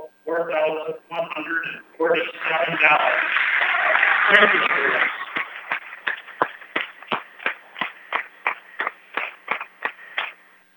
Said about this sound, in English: And you hear the claps, and they're well deserved.